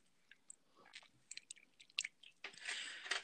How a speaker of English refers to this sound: I love doing story time during podcasts, so I'm going to drink some water real quick, and then we'll get into the story.